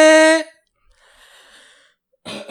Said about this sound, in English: You got all your coughs out? I got the phlegm out.